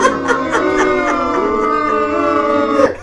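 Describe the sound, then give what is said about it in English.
A crowd booing sound effect played on a show: many voices boo loudly and steadily for about three seconds, blending into a sustained, droning jeer with some rising hoots before it cuts off. “You got booed off the fucking show.”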